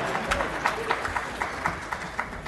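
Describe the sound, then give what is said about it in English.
An audience gives a round of applause for Western University, clapping together in a steady patter of overlapping hand claps at moderate loudness, with a few sharper claps standing out and no talking over it. “Western University, we should give a round of applause for Western University.”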